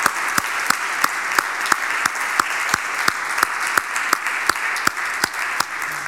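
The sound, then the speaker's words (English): An audience at First Presbyterian Church applauds steadily for several seconds in thanks to a retiring member of the church's security team, a dense wash of clapping with a few sharp, louder claps punctuating it in a fairly regular beat. No one speaks. “So let's just give a round of applause and thanks”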